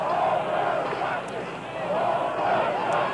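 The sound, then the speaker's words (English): A dense, steady roar of a protest crowd running from police down Balboa Street into Jackson and Grant Park: many overlapping shouting voices, with a loose clatter of hurried footsteps running underneath, loud throughout and dipping briefly halfway. “And now moving off down Balboa Street, and the crowd is running, and the police are chasing them into Jackson, into Grant Park.”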